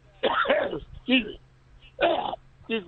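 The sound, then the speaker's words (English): A few rough, raspy bursts of coughing and throat clearing, fairly loud, in uneven clusters with short pauses between them. “Cough it up.”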